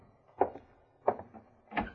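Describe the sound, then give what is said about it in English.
A door being opened: three sharp clunks at even intervals, like a latch and bolt being worked, moderately loud, with quiet between them and no voices. “All right, open the door, Harrigan.”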